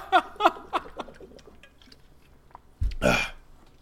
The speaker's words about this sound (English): Hang on. I need to take a big slurp for this.